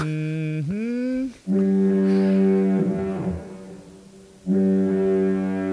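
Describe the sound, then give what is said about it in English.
A loud, deep foghorn blares in long sustained blasts, with a brief break and pitch bend before sounding again, then cutting out and returning for a final long blast. “Foghorn the hell out of that.”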